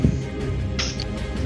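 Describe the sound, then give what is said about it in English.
A squeak toy gives one short, high-pitched squeak, bright and slightly wavering, lasting about a quarter second over a steady low background rumble. “I hear a squeak toy.”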